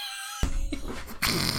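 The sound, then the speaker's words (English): A loud, raspy fart sound erupts and rumbles on for over a second, briefly stuttering before a second blast, with no talking. “I was like, oh, … farted”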